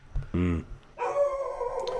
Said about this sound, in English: Whoa, puppy dog. I know. Yeah. First, is that a neighbor? Yeah. First is the helicopter and now is the neighbor's dog.